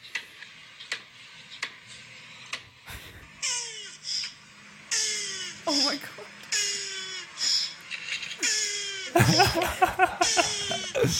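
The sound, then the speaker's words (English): A turtle moans during mating: a series of drawn-out, wavering groans, each sliding downward in pitch, repeating every second or so, with a brief exclamation from a person near the end. “This is a turtle moaning, having sex.”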